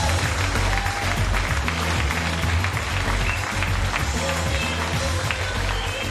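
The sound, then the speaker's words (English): Sustained audience applause for a comedian at the end of his comedy set, a dense wash of clapping from a crowd, loud and steady throughout with faint voices mixed in. “Keep that applause going.”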